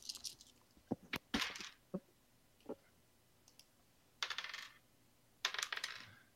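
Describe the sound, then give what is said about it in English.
Six-sided dice (D6s) clatter onto a hard surface in several bursts: sharp individual clicks and bounces, then two longer rattling tumbles as handfuls of dice roll and settle, rolled for lightning damage in a tabletop role-playing game. No one speaks. “I don't quite have enough D6s for this.”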